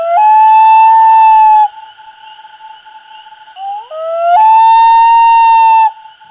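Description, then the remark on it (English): A common loon gives its long, mournful wail: a loud sustained tone, a softer held note, a sliding rise in pitch, then another loud drawn-out cry. No one speaks. “The next segment here that we want to start, common loons have a variety of calls.”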